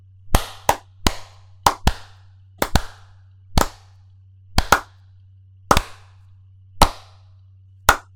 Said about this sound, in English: We're like a second off. I was trying to link up with you. I know. So was I. Okay. Oh my God. I'm just going to start clapping at 10. All right.